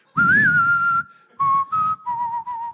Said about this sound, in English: I'd reach in the cookie jar before dinner when I'm not allowed to, and all of a sudden I'd hear that Clint Eastwood music play.